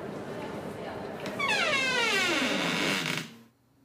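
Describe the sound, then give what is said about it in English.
The door of a train car creaks open with a drawn-out, squealing groan that slides downward in pitch for about two seconds, loud, then cuts off into near silence. “Let's open the door.”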